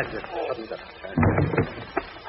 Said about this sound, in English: You hear that door opening, don't you? You still think it's a gag?